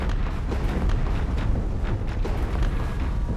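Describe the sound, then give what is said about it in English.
Two spaceships explode in a cascading set of explosions after colliding, the hull snapping: a continuous roar of deep, rumbling explosions, with repeated booming bursts layered over heavy low-end rumble, loud, like a chain of blasts going off one after another. No one speaks. “The collision snaps the hull, and both ships begin a cascading set of explosions.”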